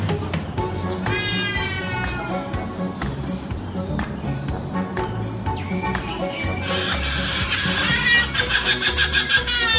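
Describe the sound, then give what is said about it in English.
A trumpeter hornbill at Jurong Bird Park mimics a cat, giving several nasal, cat-like wailing calls, also like a plastic party horn, ending in a quicker pulsing burst over a steady murmur of outdoor background noise. “However, the trumpeter hornbill has a rather convincing cat.”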